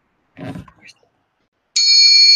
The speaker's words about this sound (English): Scrooge numbly heads to bed. Scrooge sits upright in his bed and hears the chimes once again.